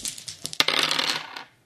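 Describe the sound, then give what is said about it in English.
Dice rolled for damage, to knock the gun away: a few sharp clicks as they are shaken, then a bright burst of rapid clattering as they tumble and skitter to a stop, fairly loud, with no voices. “Or are you rolling for damage?”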